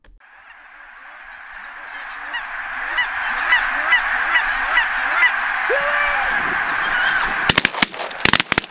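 A large flock of geese honking over one another, a dense, continuous clamor that swells steadily louder, ending with a few sharp, abrupt cracks.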